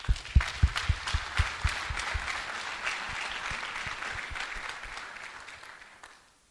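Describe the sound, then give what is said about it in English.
A burst of audience applause for a woman who says she fasted, starting with a few sharp, distinct claps that quickly blend into a steady, dense round of clapping before fading out after about six seconds. “Clap your hands for her.”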